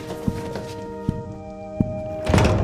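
A heavy 8-foot-tall door opens as a tall woman enters, with three dull, evenly spaced thunks over a steady humming drone, followed by a swelling rush of noise as it swings wide.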